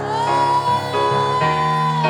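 An audience shouts and cheers in a loud, continuous mass of voices, with high whoops rising over a sustained, ringing wall of sound and no clear pauses.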